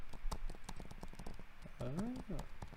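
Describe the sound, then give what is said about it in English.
Rapid, irregular computer keyboard clicks clatter, a steady stream of sharp taps, briefly overlapped by a short voiced sound partway through. “Keyboard clicking. That sounds good. I do like the keyboard clicks.”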